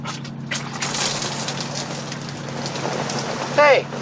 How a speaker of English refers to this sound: Hey, it's raining. You made it rain.